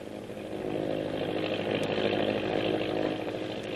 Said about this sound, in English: the Navy patrol plane is winging its way to a meeting with the destroyer, which is still hunting the disabled submarine, now safe in the lagoon on Thorson's Island.